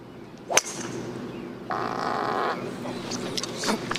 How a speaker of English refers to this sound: I'm pretty sure it's Poulter that did the fart.